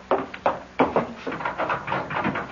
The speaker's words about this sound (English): I'll run ahead and open the door.